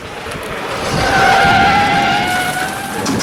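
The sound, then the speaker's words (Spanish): Car tires squeal in a long, high-pitched skid over a rumbling engine and road noise as the car takes a sharp curve on a narrow road with one wheel lifted above the ditch, the screech holding steady for a couple of seconds before easing off. “Tomamos la curva con una rueda levantada 1 metro por encima de la cuneta.”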